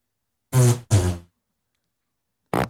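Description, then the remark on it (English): Two buzzy, drawn-out fart sounds in quick succession, followed after a short silence by a third, briefer one. Fairly loud, with no talking. “I know we had bean and cheese burritos, and it makes people fart.”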